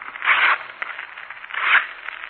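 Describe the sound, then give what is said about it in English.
Paper being torn into three strips to draw lots: two rasping, papery rips about a second apart, with faint crackling rustle in between. Fairly quiet, with no voices. “Now I'll tear three strips of paper.”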